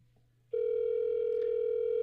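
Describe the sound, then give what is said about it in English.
A steady electronic phone tone for an outgoing call cuts in after a brief quiet moment and holds unbroken and loud to the end, with no one speaking. “Let me try to call Novel right now.”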